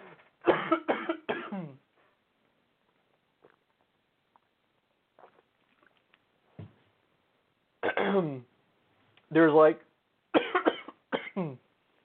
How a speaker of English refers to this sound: I feel something in my throat, like a thing. It's not coronavirus cough, I promise. It's still there.